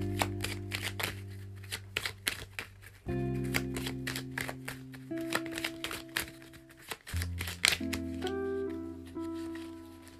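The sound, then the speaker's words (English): A deck of cards being shuffled, with quick, crisp papery riffles and taps repeating steadily over soft, sustained background music. No one speaks. “Make another sneaky wish while I'm shuffling.”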